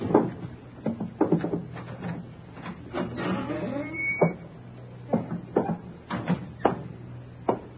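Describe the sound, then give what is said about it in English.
A door is handled as someone comes in: a run of sharp latch clicks and rattles, a brief creaking squeal partway through, then more scattered knocks as it opens, with no voices. “Quiet, there's somebody coming. Get away from the door.”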